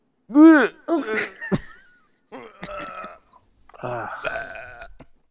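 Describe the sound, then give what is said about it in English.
A frog that has just swallowed something gags and retches in three croaky, burp-like bouts, the first loudest with a rising-and-falling groan, followed by two rougher, buzzing heaves. No one talks. “And then just the ASMR of him trying to throw up.”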